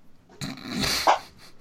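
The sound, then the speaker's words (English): A single drawn-out, muffled cat meow, made with its mouth against the bottom of a closed door, rising in pitch at the end, with no talking. “She just had her mouth like up against the bottom of the door and had the door closed.”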